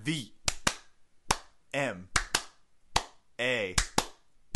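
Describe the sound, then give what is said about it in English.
Sharp, loud hand claps, roughly nine of them in an uneven, syncopated rhythm, interleaved with wordless vocal sounds from a voice humming or chanting along between the claps. “Little clap number with this one this week.”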